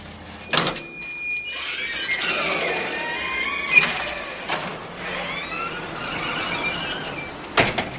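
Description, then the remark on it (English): A lift descends to street level in Argentina, with steady mechanical whirring and high squealing tones that glide up and down, broken by a few sharp clunks at the start, midway and at the end. “We head down in the lift to the street below.”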